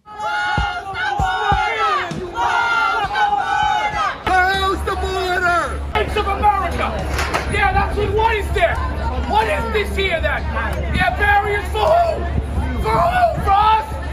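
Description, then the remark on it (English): An angry crowd at a city event attended by AOC roars and shouts continuously, with yells of "Close the border!", many voices overlapping in loud, agitated hubbub with raised yells throughout, over a steady low rumble. “This is not a crowd to lie or lecture to.”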